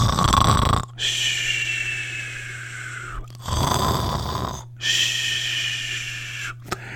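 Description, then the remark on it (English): Loud, steady snoring of airline pilots sound asleep while their plane flies on autopilot, over two full breath cycles: a rough, rattling snort on each inhale, then a longer, low buzzing exhale with a faint whistle on top. No one speaks. “But the reason that it missed the landing strip originally was because the pilots were sound asleep.”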